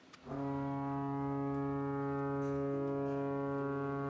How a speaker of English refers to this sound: The monster cried out at the tower. The foghorn blew. The monster roared again. The foghorn blew.